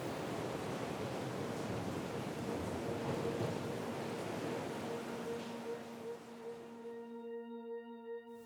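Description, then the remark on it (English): A steady, enveloping rush of ocean surf washes continuously for several seconds, then thins out as a sustained, humming musical drone takes over near the end. No one speaks. “Without looking back, she disappeared herself and himself into the cold orange waves.”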